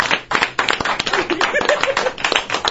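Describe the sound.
An audience claps for a man who just ate five different dog foods, in a dense, steady burst of applause, many hands overlapping into a loud crackling wash, with a few faint voices mixed in beneath.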